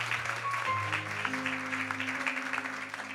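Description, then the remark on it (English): An audience claps steadily for a few seconds, a dense, even patter of many hands at moderate loudness, with a faint low sustained tone running underneath. “Absolutely deserves a clap.”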